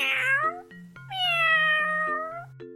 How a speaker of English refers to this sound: Cats, they meow. Meow.